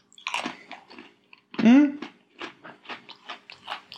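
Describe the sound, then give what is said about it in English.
Crisp crunching as someone bites into a decorated cookie, slightly soggy but still very crunchy, and chews, with steady rhythmic bursts of crackle and a brief voiced murmur partway through. “The cookie is a little bit soggy. Okay. Which... Is that good? Yeah. It's still very crunchy, but it's not as hard to get through.”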